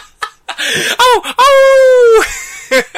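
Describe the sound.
A voice mimics a ghostly wail, a long wavering moan sliding in pitch, loud and sustained, framed by short breathy vocal bursts before and after.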